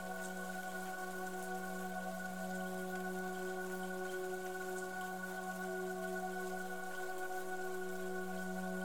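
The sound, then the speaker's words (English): Steady rainfall hisses softly and evenly throughout, blended with a sustained low humming drone of held tones, no voices present. “Allow the rain to fall upon you now.”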